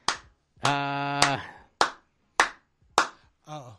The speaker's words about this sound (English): I thought you were clapping for something. No. Oh, okay. Just clapping. Getting fired up, man. Yeah, he's been doing a clap, bro.